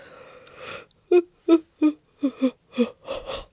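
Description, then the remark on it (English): A breathy, drawn-out yawn that breaks into a series of short, squeaky whining notes, about seven quick voiced pulses, fairly quiet with no talking. “Yawn number two.”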